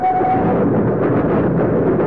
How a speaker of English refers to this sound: He is now riding a train from Dover up to London.